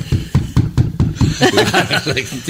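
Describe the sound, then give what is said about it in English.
A person knocks about six quick times on a wooden tabletop in a steady rhythm, fairly loud, then busier, voiced sounds take over for the last second. “starts barking because I knock on the table.”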